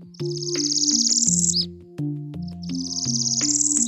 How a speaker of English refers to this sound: And there was a northern parula.